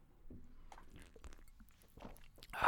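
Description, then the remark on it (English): Quiet sipping from a can of Coca-Cola: soft wet slurps and small mouth clicks, ending in a louder gulp or breathy burst near the end. No one speaks. “taking a sip of Coca-Cola”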